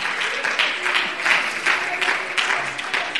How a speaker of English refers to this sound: You stand up and clap your hands in the middle of that storm and say, God, I'm in this place, but I rejoice in you.